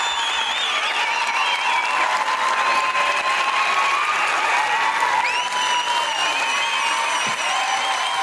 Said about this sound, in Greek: Δώστε το πιο ζεστό χειροκρότημα, γιατί είναι η ….